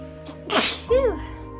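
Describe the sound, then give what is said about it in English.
A single loud sneeze: a quick sharp intake, then a forceful breathy burst trailing into a short voiced tail, over a faint steady background hum. “Bless you.”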